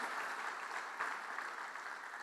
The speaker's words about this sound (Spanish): ¿Cuántos alaban al Señor? Porque Él es refugio del pecador arrepentido. Dele un fuerte aplauso a su refugio.